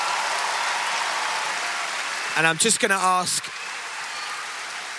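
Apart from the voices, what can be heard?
audience round of applause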